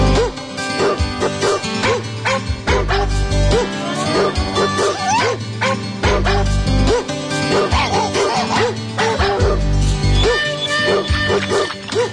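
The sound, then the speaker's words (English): A dog barks repeatedly and whimpers in short, high yelps, loud, layered over a dense, continuous background throughout. “I was, you know, fumbling around for your Lassie clip. Oh, that was perfect.”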